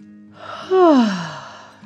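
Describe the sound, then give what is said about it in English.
A narrator imitates a yawn: a single breathy, drawn-out vocal sound that starts high and slides down into a low, tapering exhale, moderately loud, with no speech. “Zara yawned too.”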